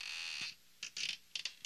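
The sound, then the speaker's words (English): Wooden stairs in a house creak as someone steps up them: a long, high-pitched squeal first, then several shorter squeaky creaks in an uneven rhythm, with no talking. “So I stepped up the stairs, and each stair went, as I stepped up, they all creaked like this.”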